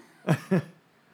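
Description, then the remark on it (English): Two heavy, harsh coughs in quick succession, with nothing else around them and no talking. “Coughing up a lung.”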